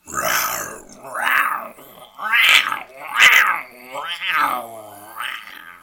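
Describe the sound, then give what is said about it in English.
A person imitates a lion's roar with a run of about six raspy, growling yowls, each a second or so long with brief gaps, fairly loud, sounding rather catlike. “I don't think I've ever done an impression of a lion in my entire life, so that's an exclusive for you and the world.”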